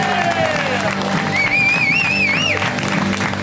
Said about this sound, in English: Oh, just a thunderous round of applause for Cameron, everybody.